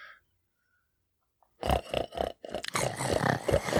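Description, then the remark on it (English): After a brief silence, pigs break into loud, rough grunts in a quick pulsing rhythm, then a denser, harsher run of snorting and grunting that continues to the end. “And here come the pigs.”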